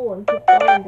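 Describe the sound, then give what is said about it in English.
The reader's own mobile phone ringtone chirps in short bright tones beneath a person reading scripture aloud, the ringing partly masked by the steady flow of speech. “Sorry for any noise, please, including my own phone,”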